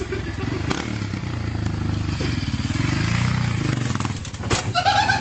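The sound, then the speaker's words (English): A motorcycle engine throbs steadily, then is revved once, its low growl rising and falling in pitch before settling back. A sharp clatter and a brief high squeal follow at the end. “Oh, hey, man, do you see how he gave it a little gas?”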